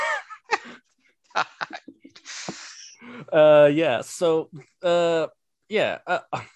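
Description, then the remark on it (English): A speaker breaks off mid-speech to imitate Zizek's quick, breathy sniff, a short nasal rush of air, then carries on talking in a louder, voiced tone. “I guess, obligatory Zizek sniff when talking about ideology there.”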